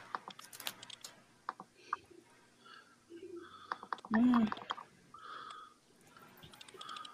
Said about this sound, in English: Is somebody typing? Now I'm not getting no feedback. It sounds like somebody's typing or something. Yeah, I can hear it. It's like an echo or something like that. It's a clicking noise.